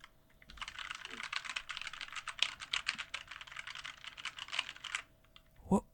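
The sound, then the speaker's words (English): Rapid, continuous clacking of a new mechanical computer keyboard being typed on for several seconds, crisp, followed by a brief louder click at the end. “My new and clackier keyboard.”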